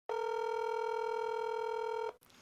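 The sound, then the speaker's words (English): A single steady electronic telephone ringing tone of an outgoing call that goes unanswered hums loudly and evenly for about two seconds, then cuts off abruptly, with no voices present. “So let's ring Joanna and see if I can get her out of bed.”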